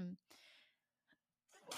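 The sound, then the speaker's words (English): A single sneeze: a short voiced intake followed by a burst of breathy noise that fades out. After a moment of quiet, someone starts speaking. “Bless you.”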